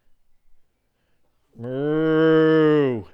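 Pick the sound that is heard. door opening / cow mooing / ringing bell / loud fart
cow mooing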